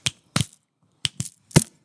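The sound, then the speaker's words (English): Five crisp finger snaps ring out alone, each short and bright: two spaced apart, a brief pause, then three more in quicker succession, the last one loudest. “Some people call it clicking your fingers, or some people call it snapping.”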